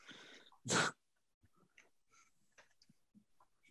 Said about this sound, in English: He's coughing.